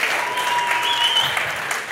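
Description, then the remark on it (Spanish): An audience applauds with dense, steady clapping that holds at an even loudness for the whole stretch, with no voices rising above it. “Y te aplauden y todo.”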